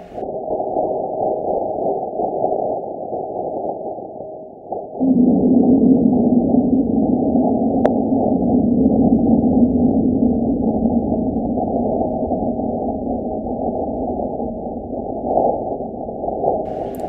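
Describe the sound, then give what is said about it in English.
A meteoroid impact on Mars recorded by the InSight lander: a muffled low rumble hums steadily, then around five seconds in a deeper, louder droning tone swells up and holds, slowly fading over the next ten seconds, with no voices. “Now, if you want to hear what it sounds like when something slams into Mars, it sounds something kind of like this.”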